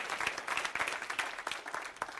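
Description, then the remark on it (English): A church audience breaks into scattered applause, many hands clapping in a dense, irregular patter that holds steady throughout, with no voices over it. “I'm waiting for somebody to clap your hands or say something.”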